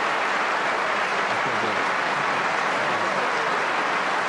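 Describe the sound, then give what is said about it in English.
Steady audience applause in a played recording fills the whole stretch, a dense, even wash of many hands clapping at once with no pauses and no voices rising above it. “Ugh, fucking clapping for that shit.”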